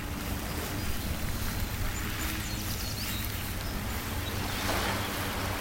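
Steady rushing wash of ocean waves fills the whole stretch, a dense hiss with a low rumble beneath, swelling slightly louder toward the end. No one speaks.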